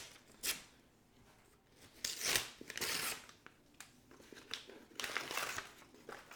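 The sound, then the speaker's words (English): Crackly paper being ripped and crumpled in several bursts as a Christmas present wrapped in golf magazine pages is torn open, with loud tearing swells broken by short pauses and softer rustling in between; no one speaks. “So I'm going to open my Christmas present here. It's wrapped in a golf magazine combination here that I didn't want to waste paper.”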